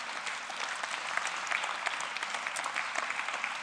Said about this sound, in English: Can we give them all a big round of applause?